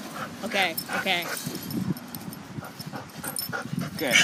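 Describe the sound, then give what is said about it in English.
A happy puppy whimpers and yips in a quick string of short, high-pitched squeals, with muffled voices underneath. “Dog. Happy dog.”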